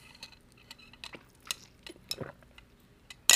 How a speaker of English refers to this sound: Hold on, I got to drink some water.